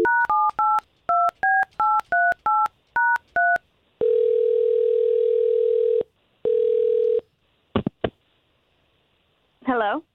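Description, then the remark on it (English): A rapid string of about eleven keypad beeps dials a woman's phone number, then a steady ring tone sounds twice, broken by a pause. A couple of clicks follow before a voice briefly starts speaking. “We'll call her and see if we can get the both of you talking, okay?”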